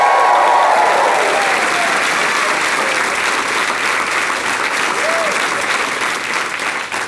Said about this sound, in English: A round of applause for her. Just for her.